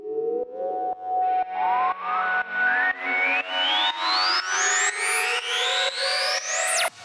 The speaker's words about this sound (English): Most of these things are MS-20, which is a Korg synth. You crank the resonance on an MS-20 and it like screams basically. And then there's a riser from a Juno as well.